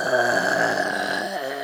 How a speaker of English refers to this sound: He over here snoring, talking all that shit about somebody else.